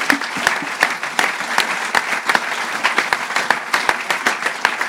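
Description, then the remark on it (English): An audience breaks into steady applause for two moments in Palace's history, many hands clapping at once in a dense, crackling wash with sharper individual claps standing out, sustained at an even, fairly loud level throughout with no talking. “Well, I think both those moments deserve a round of applause.”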